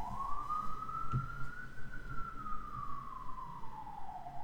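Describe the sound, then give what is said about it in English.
A police car siren wails steadily, its tone rising slowly and then falling over a few seconds, over low rumbling traffic noise with no talking. “I was waiting for these sirens to stop.”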